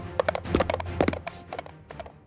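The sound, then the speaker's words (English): Hooves of a mechanical pygmy goat clip-clop in a quick, uneven run of about a dozen hard taps, moderately loud, with no voices over them. “They're a mechanical pygmy goat. Why does everyone think they're a donkey?”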